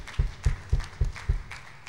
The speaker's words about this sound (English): So if you were able to come out and help us with that and serve the community, go ahead and give yourselves a round of applause. Thank you for being such a blessing.